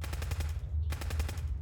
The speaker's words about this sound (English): There was more gunfire above, measured and methodical. Doesn't sound like raiders. How interesting.